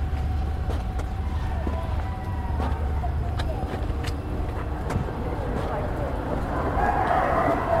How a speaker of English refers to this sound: Yeah, you hear that? I don't want to stop because I always draw attention when I stare, but I always find these chickens to be very fascinating. And they're in my neighborhood, too.